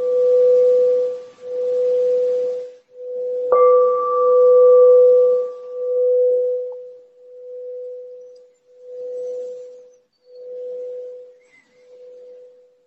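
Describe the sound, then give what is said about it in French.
A meditation bell rings with a steady, low, pure tone that pulses gently as it sustains, is struck again partway through, then slowly fades away on its own with no voices. “La cloche est apparue, disparue.”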